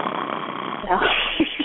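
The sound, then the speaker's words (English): A person voices a big, exaggerated fake snore for children: a long raspy inhale that swells into a rumbling, throaty snort, with a short grunt at the end. “And then I snore.”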